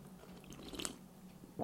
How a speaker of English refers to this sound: Let me take a sip of coffee here.